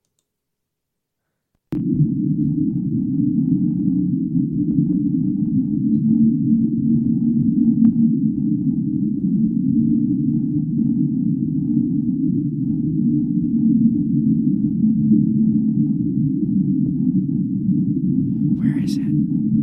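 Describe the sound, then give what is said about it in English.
An underwater ocean recording known as the Whistle: after a moment of silence, a steady, deep underwater roar begins and continues throughout. Faint, drawn-out whistling tones rise briefly out of it, and a short crackle comes near the end. “All right, you ready for the whistle?”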